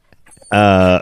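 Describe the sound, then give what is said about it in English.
A few faint, breathy puffs like soft panting, then a single loud, drawn-out whimpering whine of a puppy holds steady for about half a second before cutting off. “A couple puppies in the studio, it sounds like.”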